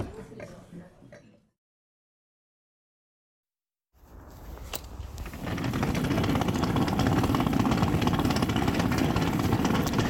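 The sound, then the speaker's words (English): Suitcase wheels roll steadily over pavement on the way to the station at 6:20 in the morning, a loud, continuous gritty rumble with fine rattling clicks. It begins after a brief silence and quickly swells to a constant level. “To the gentle accompaniment of my suitcase wheels, I'm on my way to the station.”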